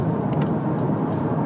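car driving on highway

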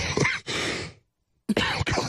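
cough

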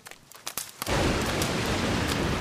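rain falling

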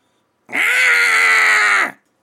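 goat bleating

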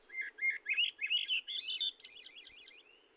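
swainson's thrush song

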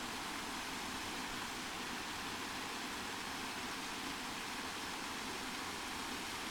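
small waterfall

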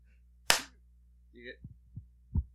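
hand clap

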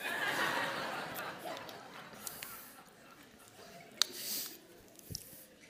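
person drinking water

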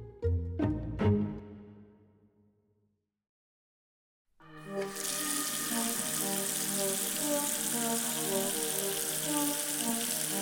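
water splashing

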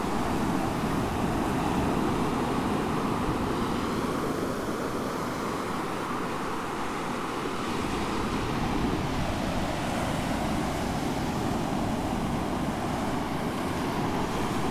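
waves breaking

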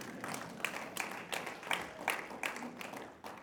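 audience clapping

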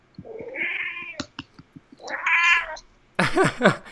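cat meowing

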